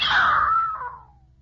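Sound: person screaming in fright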